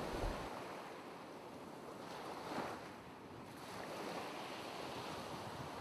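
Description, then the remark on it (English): Steady ocean surf rolls and washes continuously, a broad hissing wash of breaking waves with a gentle swell midway, no voices, with a faint wind-like rush over it. “I want you to close your eyes, imagine the cool waves, and enjoy your listen.”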